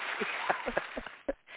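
A short burst of canned applause from an applause machine: dense, muffled clapping with a few sharper claps standing out. It sounds fairly quiet and cuts off abruptly after about a second and a half.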